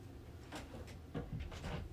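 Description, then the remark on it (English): A door being shut, heard as a short series of soft wooden knocks and clunks over about a second, quiet, with a faint hum behind. “I had to shut the door.”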